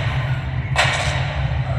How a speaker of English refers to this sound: Okay, well, that is ominous, because that, to me, feels a bit like a gavel. That big banging stick thing.